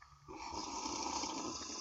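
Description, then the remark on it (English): A wet slurping sip of saison beer that starts abruptly and runs steadily for over a second, gurgly and fairly loud, with no talking over it. “How do you do that? It gets all bubbly in my throat.”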